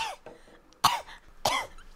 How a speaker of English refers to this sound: I'm trying out new coughs. What do you think? That's like a 3 out of 10, maybe. Well, that's got some bass to it there. It's an old man cough. You missed the phlegmy part, though. The wet sound.